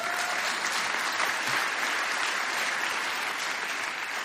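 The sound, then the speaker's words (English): Steady audience applause fills the whole stretch, a dense, even patter of many hands clapping at a constant loud level with no voices rising above it. “Come on, someone clap for that.”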